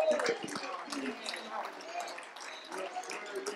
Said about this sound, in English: Oh, let's clap our hands.